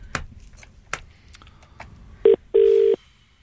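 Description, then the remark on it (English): A handful of sharp clicks from a phone being dialed, followed by two loud, steady buzzing ringing-tone bursts, a short one then a longer one, heard over a line with no talking. “She knows you are, so she won't answer the phone.”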